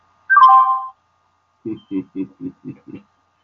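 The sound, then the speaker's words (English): A mobile phone ringtone goes off while a message by the preacher Dave Wilkerson is being played: a bright electronic chime, then a quick, even run of six low buzzing pulses before it cuts out. “That my phone went off that I was playing the message on Dave Wilkerson, a wonderful preacher and teacher that Times Square in New York, and I have listened to him for many years.”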